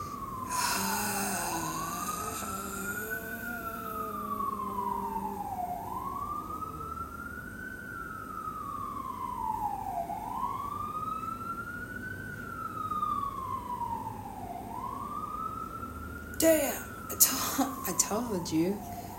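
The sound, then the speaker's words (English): An ambulance siren wails in slow, rising and falling sweeps, repeating about every four seconds, loud, with a brief burst of clattering noise near the end. “That ambulance ride was long that day.”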